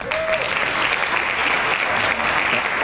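A steady burst of hand clapping from a small group, dense and continuous for a few seconds, fairly loud, with no one talking over it, given in praise of a man's immune system for keeping him from getting sick.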